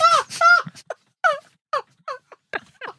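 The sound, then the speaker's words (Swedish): A man wails and sobs in a string of short, strained vocal bursts with falling pitch, two long cries followed by quicker, broken ones, fairly loud with no talking. “Vad fan? Han gråter till och med.”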